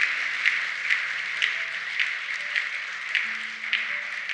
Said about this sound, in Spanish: Si lo quieres, dar un aplauso fuerte, Señor.